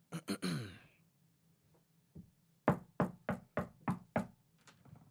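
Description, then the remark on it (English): A brief vocal sound, then a single tap followed by a quick run of about seven firm knocks on the door of a house, evenly spaced and loud. “Oh wait, did you knock yet?”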